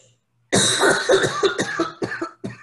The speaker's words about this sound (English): Sorry, I'll apologize once. I have some asthma and I cough a lot. I tell my students I choose to find it charming, and I invite them and all of you to do the same. So I invite you to find it charming as I cough throughout a little bit.